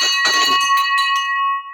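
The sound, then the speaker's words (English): A loud victory bell rings out with a sharp clanging strike, then its bright metallic tone sustains and slowly fades, with no voices over it. “So if you've got headphones in your ears, I'm about to blast them with this victory bell for Josh.”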